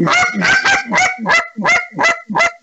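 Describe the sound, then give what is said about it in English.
A goose call blown to imitate Canada goose honks: about eight loud, nasal honks in a quick, steady rhythm, with no talking. “And then you switch over to a Canada goose, and it's a total different technique.”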